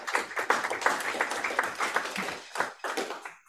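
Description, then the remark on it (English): Members of a band program applaud themselves with dense, rapid clapping from many hands, congratulating each other, steady for a few seconds with a brief dip near the end before it fades out. “Can you please give each other yourselves a round of applause and just congratulate each other?”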